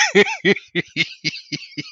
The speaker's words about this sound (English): Yeah. No, I've got the cough, damn it.